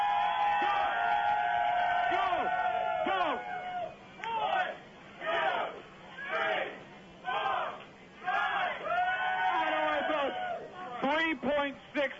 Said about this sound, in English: Get set. Cheer him on, ladies and gentlemen.